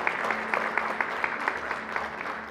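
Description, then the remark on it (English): An audience claps together in sustained applause for guest preacher Pastor Josh after his sermon, many hands producing a dense, steady patter with a faint rhythmic pulse. “Come on, let's give Pastor Josh a hand clap.”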